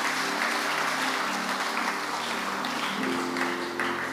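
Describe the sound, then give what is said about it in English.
An audience claps their hands for the Lord in sustained, dense applause, a steady wash of many overlapping claps at moderate loudness for the full few seconds. “Give the Lord a good clap of hands.”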